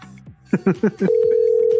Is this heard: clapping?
no